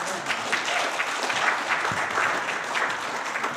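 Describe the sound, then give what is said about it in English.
A church audience applauds a speaker steadily, many hands clapping in a dense, even patter that holds at a moderate level for several seconds with no voices standing out. “Well, let's give Ken a round of applause.”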